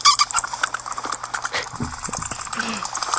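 Rapid, high-pitched bat squeaks chirp in quick irregular bursts, shrill and fairly loud, with a faint low murmur underneath; no one speaks.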